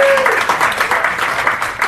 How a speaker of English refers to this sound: I tell you, Southeast Iowa is a great place to live. Let's give Southeast Iowa a big round of applause.